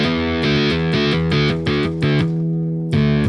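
A heavily distorted electric guitar in drop tuning, played through an amp with extra distortion, chugs through a series of low, palm-muted chords in a steady rhythm, loud, with a brief gap before a final ringing chord. No one speaks.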